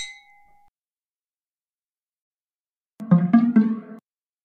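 A single bright clink of glasses rings out at the start and fades quickly, followed by silence and then a brief, fuller tonal burst about a second long.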